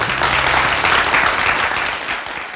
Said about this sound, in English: So, can we please have another big round of applause for Brooks Cole?